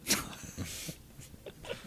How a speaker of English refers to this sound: There he is, dude. He's cute. Yeah, he's a corgi.